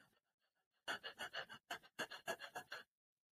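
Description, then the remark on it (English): A person demonstrates the rapid, shallow panting of fight or flight, when the heart rate goes up: about ten quick, breathy huffs in a steady rhythm, fairly loud, after a faint quiet lead-in. “Because when you're in fight or flight, you don't get to breathe deep. Your heart rate goes up and you go.”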